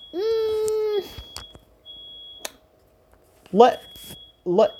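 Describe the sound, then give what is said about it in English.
A fire alarm blares one loud, buzzy, sustained tone for about a second, followed by scattered clicks, a thin high whine and short bursts of voices. “The fire alarm is going off.”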